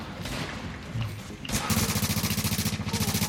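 A loud explosion in the video game The Division bursts in midway, followed by rapid, rhythmic gunfire rattling loudly over a low rumbling background.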